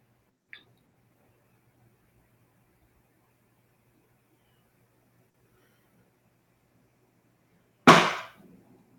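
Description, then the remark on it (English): A chair gives off a single loud, sharp crack that rings out briefly and fades, preceded by a tiny faint click; otherwise near silence with no voices. “So I'm sorry, but that was my chair.”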